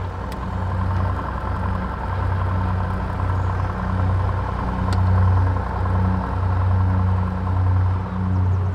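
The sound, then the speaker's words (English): A small airplane engine runs steadily on the ground before takeoff, the airplane ready to go, a loud, continuous low drone with a throbbing hum that swells slightly at times. No voices are heard. “All right, airplane's ready to go. Are your seatbelts on and secure?”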